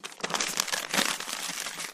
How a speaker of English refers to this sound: Okay, paper ruffling, that's enough. Hello, intern!